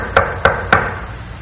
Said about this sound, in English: Knock, Knock